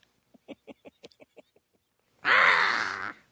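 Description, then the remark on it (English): A voice imitates a bird: a quick run of about eight short, clipped clucks, then a pause and one loud, harsh cawing squawk held for nearly a second, alone. “I sound just like that stupid-ass bird in the Dinosaur Planet Power Records Star Trek adventure.”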